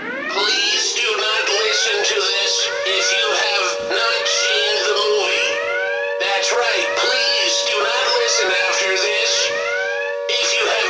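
A loud alarm siren sound effect, played to mark the start of a spoiler section in a movie review, wails without pause for about eleven seconds, its pitch sweeping up and down in quick, repeating cycles over a steady sustained tone.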